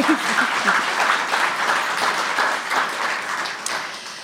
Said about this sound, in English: And as before, the whole house is sold out, which I also think makes actually Siri Hustvedt one of our most popular authors throughout the House of Literature's existence. So that deserves another applause, I think.